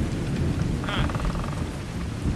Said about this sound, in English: Can we get out of the fucking rain, please?